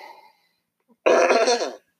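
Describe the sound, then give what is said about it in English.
One loud cough from a person coughing away from their phone, a harsh burst lasting under a second that follows a short faint sound and a moment of silence. No one speaks. “I'm so sorry. I keep coughing.”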